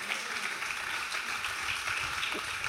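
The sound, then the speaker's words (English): A crowd claps steadily, a dense wash of many hands at a fairly even loudness with no voices standing out, lasting a few seconds. “Come on, we can get clap for that.”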